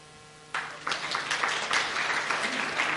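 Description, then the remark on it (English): After a brief quiet hum, a crowd bursts into applause in answer to the question of whether anyone has ever hurt them, many hands clapping in a dense, sustained wash that swells and holds steady, loud. “By round of applause, has anyone ever hurt you?”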